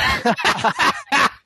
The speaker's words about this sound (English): Sorry. The coughing wave just passed.